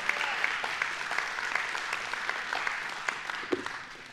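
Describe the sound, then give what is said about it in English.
An audience gives the Lord a hand clap, clapping together in steady, sustained applause, many hands producing a dense, even wash of claps for about four seconds before tapering slightly at the end. “I believe that's a good place to give the Lord a hand clap.”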